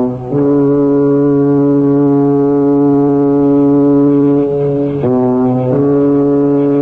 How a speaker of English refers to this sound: There's the British aeroplane.